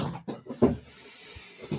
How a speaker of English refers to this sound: Yeah, that was me by accident. I was fixing my chair. Yeah, I was fixing my chair and shit.